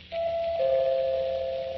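A two-note doorbell chime sounds once, a higher tone sliding into a lower sustained one that rings out clearly and fairly close, with no one speaking.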